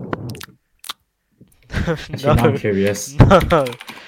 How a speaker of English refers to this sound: Gonna type it up on your fucking Zeus Thunderbolt keyboard.